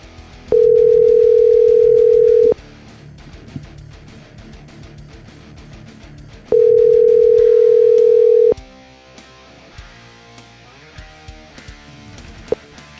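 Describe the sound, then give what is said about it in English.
A telephone rings on the line as a call is placed to a radio show guest: two steady, mid-pitched tones, each about two seconds long, separated by a pause of about four seconds, over faint background noise and a few soft clicks. “We're gonna call her first”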